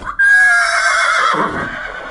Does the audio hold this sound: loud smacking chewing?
no